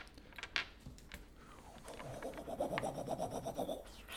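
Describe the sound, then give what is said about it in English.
A foley whoosh of Gillick swinging his hammer through the air: a rough, rasping rush that swells and flutters rhythmically for a couple of seconds, fairly loud, with no talking. “That's him swinging his hammer in the air.”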